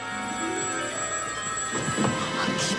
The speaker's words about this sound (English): One of the payphones starts ringing.